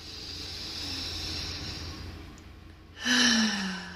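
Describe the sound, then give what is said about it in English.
A long, steady breath drawn in through the nose, soft and airy for a few seconds, followed by a louder, voiced sighing exhale. “And so I just ask that you come into this present moment fully in your heart, breathing in beautiful light, beautiful energy in through your nose.”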